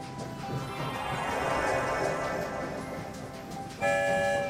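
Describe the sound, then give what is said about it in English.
A train whistle toots twice loudly near the end as the train leaves the station, cutting over a steady rolling rumble of the moving train that fills the whole clip. No one speaks. “There goes the sound of two whistles. We're on the move, headed for the rainbow tunnel that will take us far, far away.”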